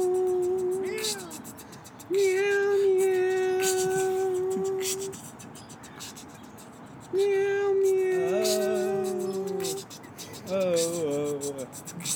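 Several long, drawn-out cat meows, each held steady for a few seconds with pitch bends at the ends, loud, separated by short quiet gaps.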